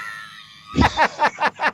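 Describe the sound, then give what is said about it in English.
A person screams: a thin, drawn-out high cry, then five short shrill yelps in quick rhythmic succession, fairly loud. “No, Grandma taught me, if you just run around and scream.”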